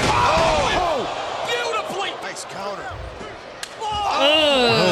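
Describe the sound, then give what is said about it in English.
A single sharp, heavy thump of a wrestling body slam cuts through a loud, continuous wash of crowd noise and shouting voices, landing abruptly before the crowd roar swells again. “Trying to bust up your opponent. Oh, that I heard that thump.”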